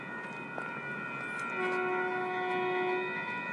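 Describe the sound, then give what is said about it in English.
A train going the other way approaches with a steady rumble and sustained horn-like tones that swell in loudness partway through, growing louder, heard by someone waiting for a train on a cold day, with no talking. “Oh, the train going the other way is coming.”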